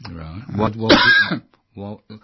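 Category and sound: human body sound, throat clearing and cough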